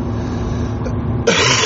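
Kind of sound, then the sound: human body sound, hacking cough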